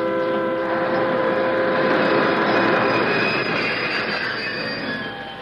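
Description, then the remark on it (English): A train brakes with a loud, sustained metallic squeal of wheels, high steady screeching tones over a broad rumbling roar that eases off slightly at the end, as it stops for rocks on the track. No one speaks. “Let the conductor know he's got to swing the handbrake.”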